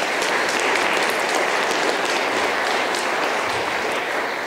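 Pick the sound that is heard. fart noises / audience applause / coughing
audience applause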